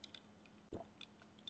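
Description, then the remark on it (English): A quick sip of Gatorade, one short gulp, surrounded by faint mouth clicks and a low steady hum, with no one talking. “Take a quick sip of the Gatorade and then move on to game three.”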